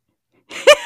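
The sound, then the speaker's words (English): A sudden, sharp hiccup bursts out after a short breathy lead-in, loud, with a second catch starting right at the end. “With the hiccup at the end.”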